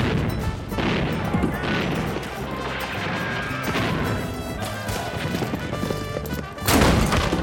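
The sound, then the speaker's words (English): The front doors of a mansion crash inward as a band of masked, cloaked caballeros enter, amid a dense, busy clatter of banging and thudding, ending with a loud smash near the end. No one speaks. “The doors to the front of the mansion crashed inward, revealing a band of caballeros dressed in masks and cloaks, exactly like Zorro.”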